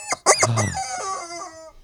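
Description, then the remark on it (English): A person imitates a rooster's crow: one loud, drawn-out cock-a-doodle-doo lasting under two seconds, rising sharply at the start, then holding a strained, wavering tone before trailing off. “That mother clucker.”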